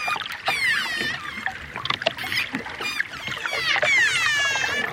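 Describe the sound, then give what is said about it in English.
Dolphin whistles rise and fall in rapid overlapping chirps, scattered with sharp clicks, against a faint watery underwater background, steady throughout with no talking. “And dolphins also use sound to communicate.”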